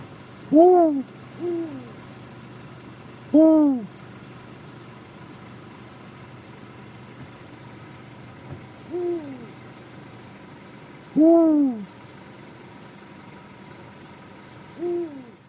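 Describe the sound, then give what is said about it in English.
An eagle owl gives deep, resonant hoots, about six of them at uneven intervals, some close together and some softer, over a faint low engine-like hum with no talking. “And I've got a pause on the way to say good evening to an eagle owl who always hellos me as I go past now.”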